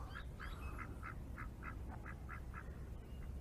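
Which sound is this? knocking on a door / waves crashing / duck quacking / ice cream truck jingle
duck quacking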